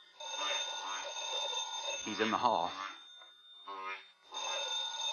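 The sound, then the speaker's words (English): A telephone bell rings in long, steady trilling bursts with a short break, fairly loud, while a man speaks briefly over the middle of it. “Oh, that's probably Mother. She was supposed to call back.”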